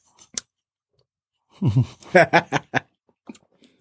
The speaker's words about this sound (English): Nothing like chewing on the radio.